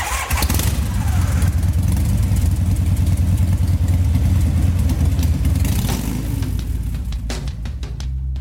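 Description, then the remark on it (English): A '76 Harley-Davidson FXE chopper motorcycle engine cranks and fires up, settling into a loud, deep, lumpy idle with a steady low rumble and rattling mechanical clatter throughout, before tapering off near the end. “Yeah, it's a 76 FXE. That's a Harley Davidson, in case you didn't pick that up.”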